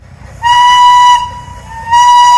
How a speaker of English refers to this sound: For the first time in about 50 years, the House of David steam-powered locomotive 902 has been fired up and operating at the Michigan Flywheelers Museum in South Haven.